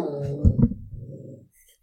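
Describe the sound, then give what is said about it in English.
A dog whimpers with a high, tonal whine, then lets out a low, rumbling growl for about a second before falling quiet. The sounds are fairly soft, with no talking. “Got a lot of dog noises going on.”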